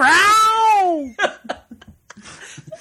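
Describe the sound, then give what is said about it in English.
A single loud, drawn-out cat meow lasting about a second, clear, followed by a few short, scattered bursts of softer sound that could be faint laughter. “I think that deserves a cat.”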